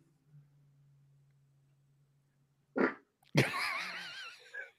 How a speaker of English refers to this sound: She farted before he even poked her butt. I think she knew.